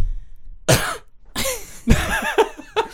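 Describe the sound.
A person mimics a harsh, raspy cough, producing a string of about four or five loud hacking bursts in quick succession, with no other talking; imitating an audience member's cough heard after a band finished playing live.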